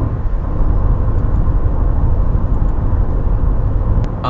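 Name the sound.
traffic noise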